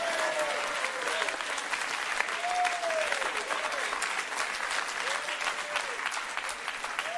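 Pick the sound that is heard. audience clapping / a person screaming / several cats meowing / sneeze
audience clapping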